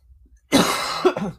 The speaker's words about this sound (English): A little cough there.